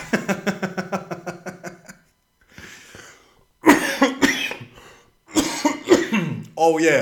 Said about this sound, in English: Oh yeah, and I've had a fucking cough too. So I'm at the comedy clubs and I've got to make sure I cough up a fucking full lung before I get on stage because I'm going to make sure I don't cough while I'm on stage. And my cough's productive too.